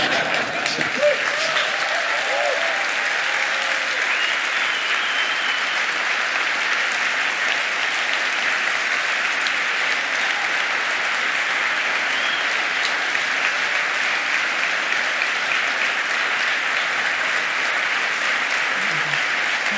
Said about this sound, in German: Wie Künstler heute, als wenn ich was gesungen hätte. So viel Beifall kriegt man nur, wenn man was gesungen hat. Dankeschön.